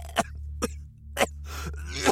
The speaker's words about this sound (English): coughed again and choked on something wet. It tasted like metal.